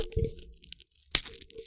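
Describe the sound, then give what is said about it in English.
A fortune cookie cracks open with brittle, crinkly crunching, a loud sharp snap midway, then softer crumbly crackles trailing off. “Nobody wants to hear that crunching.”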